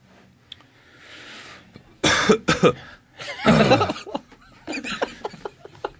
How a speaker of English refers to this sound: Yeah, that cough is really, it's still bothering me. You gotta get that thing checked out.